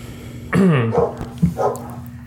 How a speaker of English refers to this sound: We're back and there's just so many dogs barking. Do we need to go outside? Is there a situation going on? No. Why are they all flipping out? It's usually not this bad.